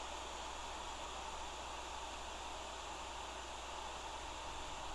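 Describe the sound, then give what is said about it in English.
Steady brown noise played from an app hisses and rumbles without a break, a dense, even wash of sound with a deep low end. No voices or other sounds cut through it. “it's actually brown noise that I listen to.”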